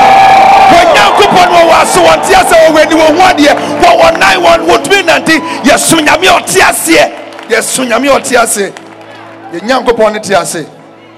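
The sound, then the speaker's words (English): An audience bursts into loud, sustained clapping and shouting praise to Jesus, with rapid dense claps and overlapping cheers and whoops that fade into scattered bursts toward the end. “Somebody clap your hands, lift up your voice, and give Jesus a shout of victory.”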